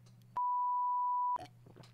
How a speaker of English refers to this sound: Could I have done a loud beep while I was drinking? I don't know if it had a similar, you know.